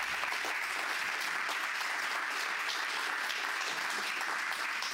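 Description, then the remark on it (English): Attendees at a conference event applaud steadily, a dense wash of many hands clapping together at once, sustained for the whole stretch without a break or any voices standing out. “Round of applause for y'all here.”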